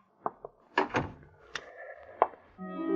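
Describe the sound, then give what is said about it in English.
A door is closed by a man holding a gun, swinging shut with a quick series of wooden knocks and clunks and a brief creak, ending in a firm latch; a low tonal hum rises right after. “After he closed the door, the man with the gun switched on the lights.”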